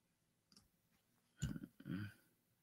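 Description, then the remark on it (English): Choppy, broken-up audio from a cutting-out internet connection during a live broadcast: near silence, then two short garbled bursts of distorted sound with clicky glitches, before it fades back to quiet. “Creo que seguimos teniendo problemas con el internet. Sí. A ver, te perdí por un momento.”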